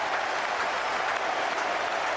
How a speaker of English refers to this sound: He's got it away. That's well played. Listen to the roar goes up.